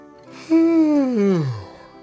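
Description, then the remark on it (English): A single drawn-out yawn while waking up and stretching, voiced and breathy, its pitch sliding steadily downward over about a second before trailing off, fairly loud with no talking. “So wake up, open your eyes, stretch your arms out wide, and let out a yawn.”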